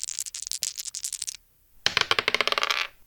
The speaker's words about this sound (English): we are going to finish with our usual game of Roll That Dice